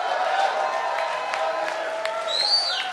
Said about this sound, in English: Come on, shout and give a clap to God.